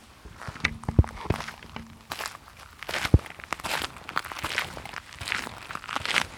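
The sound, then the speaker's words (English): Brisk footsteps crunch along at an uneven pace through the cold night air, each step a gritty, scuffing thud, with a few sharper, heavier footfalls standing out. No one speaks. “He steps swiftly through the cold night air”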